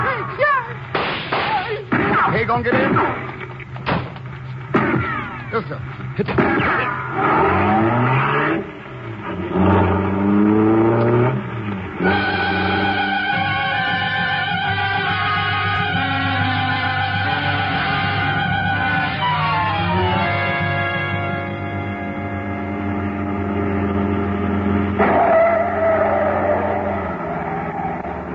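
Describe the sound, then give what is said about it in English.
A car roars off at speed, its engine revving hard and climbing in pitch through the gears, loud, then holding a steady high drone before easing off near the end. “Come on, Professor. In the car.”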